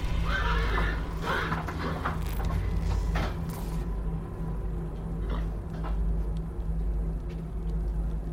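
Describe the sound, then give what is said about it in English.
Horses whinny loudly while hooves clop steadily beneath, with a constant low rumble underneath; the neighing is strongest early, then the scene settles into continuous hoof and mechanical noise. “Cast something on the damn horses.”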